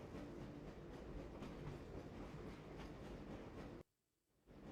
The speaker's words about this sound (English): This train is inbound from level 3 dormitories to Sector C test labs and control.